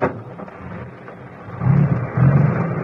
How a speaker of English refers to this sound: One of the trucks was just leaving.